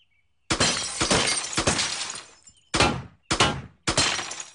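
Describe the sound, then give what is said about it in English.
A glass bottle is struck and shatters with a loud crash, followed by a spray of tinkling shards, then three more sharp breaking bursts in quick succession, each trailing off into jangling glass. “Think I can hit that bottle?”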